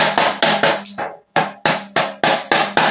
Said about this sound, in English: So, this is the small drum. And this is the big drum.